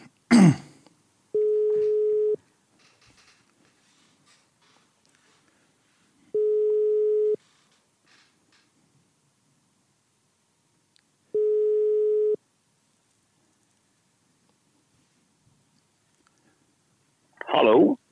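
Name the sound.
telephone call ringing tone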